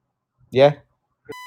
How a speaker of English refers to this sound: Oh, there's loads of beeping going on as well.